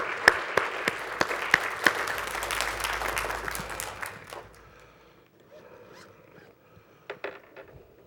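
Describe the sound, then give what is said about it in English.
An audience at a morning church service applauds the choir with dense, steady clapping for about four seconds, then the applause thins and fades into a few scattered claps and low murmurs. “Let's give the, before we go any further, let's give the choir another applause, shall we?”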